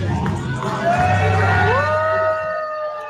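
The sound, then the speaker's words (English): A crowd cheers and whoops together, loud and sustained, with one rising shout standing out over the roar as the noise holds for about three seconds, as a scale shows a very heavy man's weight of 560. “You hear him cheering for his fat ass?”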